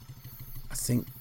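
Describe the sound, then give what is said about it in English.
A voice imitates a motorbike engine idling, a low steady putter of rapid even pulses that swells briefly louder near the end before settling back. “I'm really not so sure now, so I'll just keep the engine on idle. Just ticking over nicely.”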